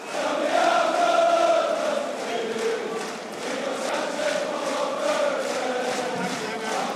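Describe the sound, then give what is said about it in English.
A large stadium crowd of United fans sings the song for player Fred loudly in unison, a sustained, steady chant with a rising and falling melody over a dense roar of many voices. “Listen to how loud this is.”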